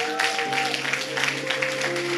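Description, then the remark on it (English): A church audience claps steadily for their pastor in a dense, continuous wash of applause, with sustained keyboard or organ tones holding underneath throughout. “Why don't we give a round of applause to our pastor?”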